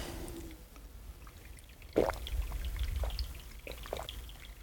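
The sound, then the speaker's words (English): Water is poured into a glass for a drink, a steady gurgling stream that starts abruptly and runs for a few seconds with small splashy drips, no voices over it. “Everybody take a water break.”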